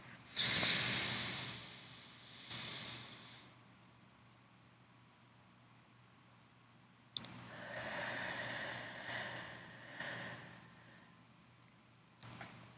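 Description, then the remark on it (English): Slow, deep breaths drawn in and let out in a 4-4-4 breathing exercise (in for 4 seconds, hold for 4, out for 4): a loud, airy inhale, a fainter follow-up, a long silent pause, then a drawn-out hissing exhale and the start of another breath. No talking. “Having the whole sneeze fest going on has actually made it way easier for you to hear when I breathe.”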